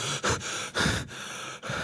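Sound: person imitating gasping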